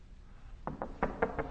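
Five sharp knocks on a door in quick succession, slightly uneven in rhythm, moderately loud against a quiet background with no voices.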